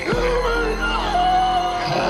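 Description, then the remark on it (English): A man lets out a loud, strained scream that seems drawn in on a gasping inhale, wavering in pitch for about two seconds, with no talking. “Because he's, like, sucking in air as he's screaming.”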